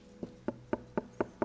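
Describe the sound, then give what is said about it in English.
Six quick, evenly spaced knocks rap out in a steady rhythm, each one a short, dull, wooden thud, fairly quiet, with no voices over them. “He's not going to force his way into your heart. He just knocks.”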